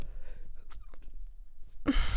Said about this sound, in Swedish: Ursäkta, du bara slutade där med lite gäspningen.